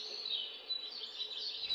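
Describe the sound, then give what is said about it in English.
Faint, steady high-pitched chirping and twittering from small birds at a bird feeder, with short bright calls poking out of a continuous background chorus; no voices. “All I want to do is sit here on my back porch, sip my coffee, and enjoy the splendor of the birds at the bird feeder.”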